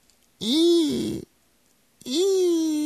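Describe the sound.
A person's voice imitates a crying dove with two long, wavering wails. Each starts low, swoops up in pitch, then holds a strained, moaning tone, with a brief silence between them.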